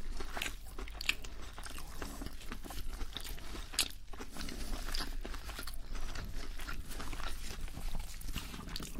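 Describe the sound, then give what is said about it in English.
Crunchy bites into fried chicken nuggets, followed by steady, moist chewing with repeated crisp crackles over about nine seconds, fairly loud and with no talking. “Look at me, without even realizing, I've gone straight in for the chicken again.”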